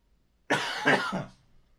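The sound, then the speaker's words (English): A harsh post-flu cough, a rough burst of two or three quick hacks lasting under a second, heard on its own with quiet before and after. “I had the flu not too long ago, and now I'm in the middle of a post-flu cough, which will be lasting anywhere from tomorrow to 16 years from now.”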